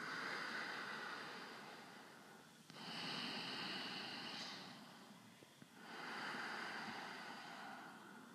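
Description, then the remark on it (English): Slow, steady ujjayi breathing with a soft, hissing ocean-like rush, two long breaths separated by a brief pause, each swelling and fading smoothly like a wave. No one speaks. “Also known as the ocean breath, because it's like waves.”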